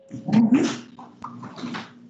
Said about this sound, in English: It is a dog noise, okay. It sounds like a dog, like, chewing on something or, like, rolling it back and forth. Kind of growling at it, like that, like when they play tug of war.